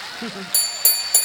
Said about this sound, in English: say that again so I can ring this little bell because it's fun.